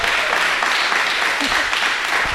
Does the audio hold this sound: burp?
no